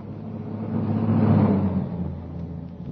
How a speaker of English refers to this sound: The timing was perfect. As the car stopped, the first post office van was already approaching.